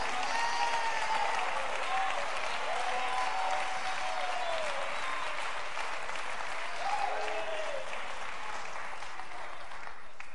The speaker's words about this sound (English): Clap your hands, all you people, and shout unto God with a voice.